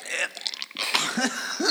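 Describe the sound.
A voice imitates a gagging, regurgitating sound: a raspy, throaty retch with choking coughs and guttural bursts, fairly loud, lasting under two seconds.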